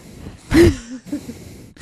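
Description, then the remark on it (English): A voice imitates heavy breathing right up against a microphone: one loud, close, rasping exhale with a slight voiced groan, trailing off into softer breathy murmurs. “was breathing through the mic the whole time like this, like.”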